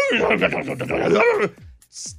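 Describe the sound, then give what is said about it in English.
A person imitates two dogs fighting an unknown animal in a yard at 1 in the morning, a rapid burst of growls, snarls and yelps for about a second and a half, ending with a short breathy hiss. “Dogs started barking, screaming.”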